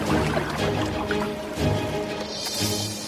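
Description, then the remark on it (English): Water sloshes and washes steadily around the hull of a sailboat as it moves through the sea, a continuous churning with gentle splashes and no voices. “So one morning, she decided to take the sea and see where it leads her. Samantha set sail, all alone.”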